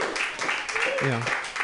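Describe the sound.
An audience at a show applauds in a dense, steady patter of clapping for the person running the show, filling the whole clip, with a voice briefly calling out over it partway through.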